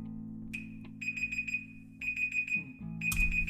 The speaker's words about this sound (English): That. is my alarm. I'm trying something different I'm putting a 5-minute alarm to see what happens when I put a structure like a canvas for a painter.